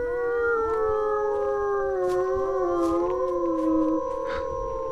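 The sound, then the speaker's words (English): Several dogs howl together in a long, overlapping chorus on Halloween evening as it is getting dark, their wavering voices rising and falling for about four seconds with no talking. “Sounds like the dogs want to sing about the wet dog smell too, huh? Must be the full moon, huh?”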